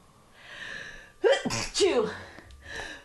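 A loud sneeze bursts out after a short breathy lead-in, with a sharp intake followed by the forceful explosive release, then fades into quiet background noise.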